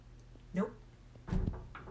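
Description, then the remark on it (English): A door blown shut by the wind bangs with a heavy thud, preceded by a softer knock a moment earlier, against a low steady hum. “Actually, I know why that door shut. Because of the wind.”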